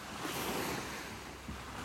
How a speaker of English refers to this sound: I keep pausing because I figure you want to listen to the waves as much as I do.